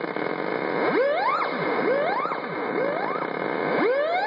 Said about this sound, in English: And so it basically, the closer your hand gets to the strings, a theremin hum will come out of the strings.